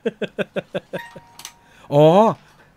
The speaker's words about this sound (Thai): อ๋อไอมิวสิกบ็อกมันดังเองอุ้ยเฮ้ยแคนนอนอินดีเมเจอร์ฮะมันอยู่มันดังเองตกใจหมดเลยพอแล้วตกใจเนี่ยโอ้ไม่หยุดด้วยฮะแล้วรำคาญนิดนึงแล้วกันนะครับผมไม่รู้จะไปหยุดมันยังไงนะฮะ